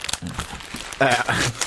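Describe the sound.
Crinkly foil packaging of a Butler's chocolate egg being chewed and torn open live on air in a radio show, with loud, irregular rustling bursts and a brief voice sounding partway through.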